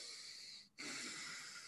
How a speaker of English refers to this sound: Whenever you're breathing through your nose, it sounds like the ocean crashing in and retracting and stuff.